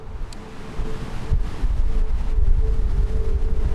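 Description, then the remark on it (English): Wind buffets a microphone on a beach on a windy day, a steady low rumble that swells louder after the first second and keeps roaring in uneven gusts, with faint surf-like noise behind it and no voices. “We're on the beach, it's a windy day, so sorry about that.”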